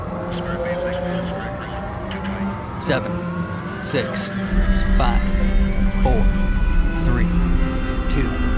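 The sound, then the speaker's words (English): Rocket engines ignite at launch as the ignition sequence starts, a deep, loud roar swelling in partway through and continuing steadily beneath a steady hum and faint radio-like voices. “Ignition sequence start.”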